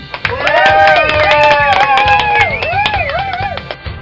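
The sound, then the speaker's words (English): A crowd claps and cheers, with whooping, rising and falling voices over steady applause that carries on without a break for a few seconds. “Let's give the programmers who do this a round of applause for their awesome work, eh?”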